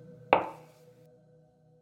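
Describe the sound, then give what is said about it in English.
A single sharp knock on the white front door of an expensive-looking white house, a quick hard rap that rings out briefly and fades, with a steady low hum underneath and no voices. “An expensive-looking white house with a white fence and a white car and a white door, upon which he was knocking.”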